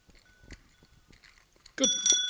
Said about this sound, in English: Good Lord, that's harder to do than it should be. It's a child's bicycle bell. Good luck if you're the child riding that bicycle, trying to activate that in time. You'd just... No, I was pushing it the wrong way.